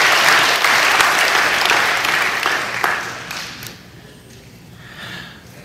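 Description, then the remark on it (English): An audience bursts into sustained applause for the modern state of Israel in 1948, a dense wash of many hands clapping that holds strong for about three seconds, then thins and fades to scattered claps. “And ladies and gentlemen, I need a round of applause for the modern state of Israel in 1948.”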